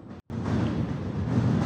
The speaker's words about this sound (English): And yeah, so what you gotta do is I just put some subway sound on, just so you know. Okay, yeah. Oh, so I've got a Toronto subway. Here's the Toronto subway.